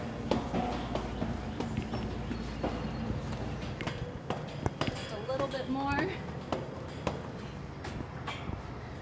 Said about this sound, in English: led me up a flight of stairs. In we go.